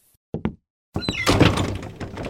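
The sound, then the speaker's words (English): A door is pushed shut: two quick wooden thumps of the latch, a brief pause, then a louder rattling, scraping clatter as it settles into the frame, with no voices. “Chester, close the door.”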